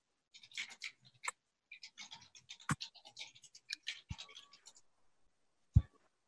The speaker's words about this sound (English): Hold on just a second. I'm still typing this up. Okay.